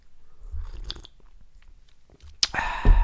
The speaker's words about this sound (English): I'm going to take a sip of tea.